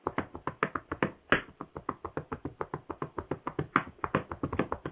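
A shoe-shine rag snaps and pops in a quick, steady rhythm as shoes are buffed to a mirror shine, sharp cracks repeating several times a second without pause and with no talking.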